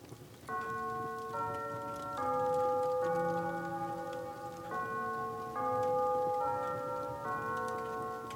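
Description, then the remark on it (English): A clock chimes the half hour, a slow melody of eight bell-like notes, each ringing on into the next, fairly clear against a soft, steady hiss in the background. “The next 15 minutes seemed to stretch so long that more than once he was convinced he must have dozed off and missed the clock chime.”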